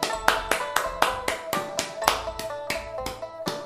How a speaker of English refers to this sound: Who on earth is clapping their hands? None of us have even moved a finger. They must have misplayed the sound effect here.